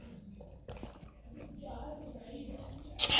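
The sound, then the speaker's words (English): Quiet sipping of a drink by a person pausing while talking, with soft mouth and swallowing noises over a low background, ending in a short, louder breathy burst. “As I just took a sip, now I'm getting back to this message.”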